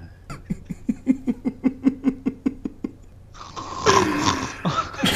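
A voice imitates a man's loud snore as a rapid, rattling run of about a dozen snorting pulses, followed by a burst of noisy crowd reaction.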